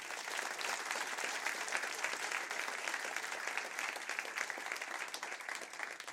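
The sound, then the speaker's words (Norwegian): Steady audience applause at an evening event about Oddvar Brå, given for Thor Gotaas, author of a book about him: a dense wash of many hands clapping at an even level throughout, with no voices standing out. “Og en stor applaus til mannen som har skrevet en bok om legenden, nemlig Thor Gotaas.”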